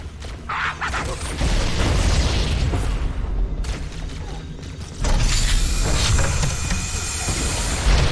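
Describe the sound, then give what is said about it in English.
Video game grenade explosions: a loud, rumbling burst of noise that swells around a second and a half in, then a second heavy blast hits near five seconds, followed by sustained hissing roar. “One thing to remember in this game is that grenades blow up other grenades.”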